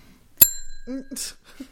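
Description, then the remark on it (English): A single bright ding of a small bell, struck once and ringing out briefly as it fades, followed by a short burst of someone speaking. “I shall ring my own bell. I normally have to.”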